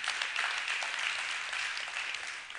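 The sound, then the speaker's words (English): A church audience applauds steadily, giving the Lord a hand clap, many hands clapping at once in a dense, continuous wash of sound that holds fairly loud throughout with no voices standing out. “Y'all give the Lord a hand clap.”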